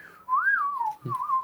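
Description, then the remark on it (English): A person whistles a short sliding tune, the pitch swooping up and then gliding down, imitating Yondu's arrow-controlling whistle from Guardians of the Galaxy. It sounds clear, with no talking. “like Yondu the Mohawk man, and like, he's in a, whistling with his arrow. Yeah. How's that for audio for your podcast?”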